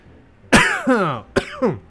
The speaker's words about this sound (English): I didn't mean to cough in y'all's face.